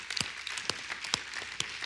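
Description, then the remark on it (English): Scattered clapping from a church audience during a sermon, fairly soft: a few sharp, distinct claps stand out over a thin wash of lighter patters, irregular rather than steady, with no voices. “Let's clap for that then, because that's a good thing to clap about.”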